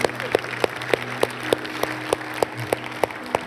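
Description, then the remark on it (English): Audience applause with steady, rhythmic clapping beats roughly three times a second over a dense wash of clapping, a low sustained musical hum underneath, moderately loud. “Let's give God a round of applause today.”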